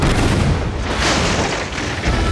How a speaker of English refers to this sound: A cannon shot erupted from the gunsway, but for some reason, it didn't tear into the side of the Fancy.